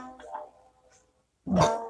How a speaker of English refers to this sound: Ooh, just had to burp.